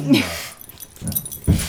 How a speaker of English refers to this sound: I think that's the dogs telling us they want some attention. Yes. So, I think we should go deal with them.